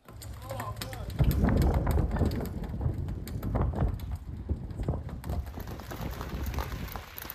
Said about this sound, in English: And as we walked to the first tee, all of a sudden it began to not rain, not snow, as you might think, but out of nowhere, it began to hail.